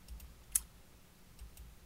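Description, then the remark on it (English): Quiet computer clicks: one crisp mouse or key click stands out, with a few fainter taps scattered around it against low background hum. No one speaks. “I'm just clicking around here.”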